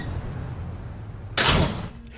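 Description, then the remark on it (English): A door opens with a sudden loud, broad whoosh and rattle lasting about half a second, preceded by a low quiet hum and fading back to near silence. “Will you open the door for me and my love?”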